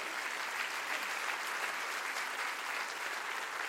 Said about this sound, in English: Clap your hands to that.